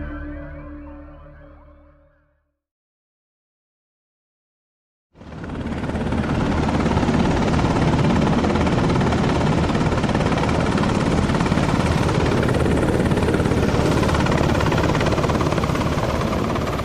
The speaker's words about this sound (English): This is Hearing Voices inside a Black Hawk helicopter, recorded by Jake Warga in Baghdad.